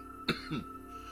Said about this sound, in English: He doesn't have COVID. He's smoking and choking. Over here talking about COVID and you coughing.